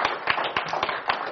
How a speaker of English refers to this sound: Just give a mighty clap offering unto God.